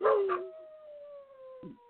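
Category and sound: animal, dogs howling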